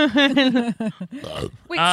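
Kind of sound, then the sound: human body sound, burp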